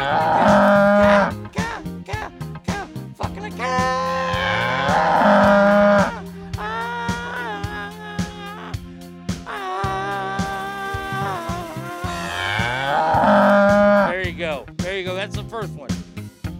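Long, drawn-out cow moos repeat several times, loud, with rising and falling pitch over a steady low humming drone.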